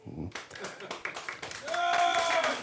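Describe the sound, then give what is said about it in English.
A burst of audience clapping, given as a vote on whether the speaker is right, starts abruptly and carries on as a dense, steady patter, with voices calling out and a rising whoop or whistle over it near the end. “Clap if I'm right.”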